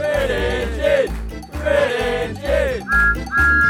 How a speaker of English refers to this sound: Thomas peeped his whistle and he puffed as fast as he could after James.